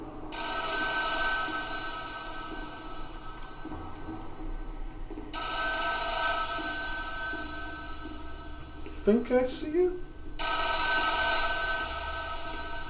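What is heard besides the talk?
telephone ringing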